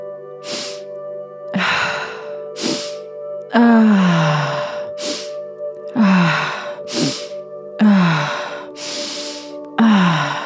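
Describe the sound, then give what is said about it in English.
Deep, steady breathing with slow, rhythmic inhales and exhales, some exhales ending in a low voiced sigh, over a soft, sustained musical drone. “Breathing. Keep circulating that breath.”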